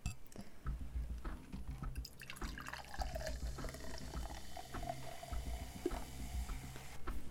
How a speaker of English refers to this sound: All right, let's pour it in the glass.